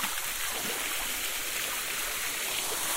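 Steady rush of a waterfall splashing over lichen-covered rocks, a continuous bright hiss of falling water with no pauses and no voices.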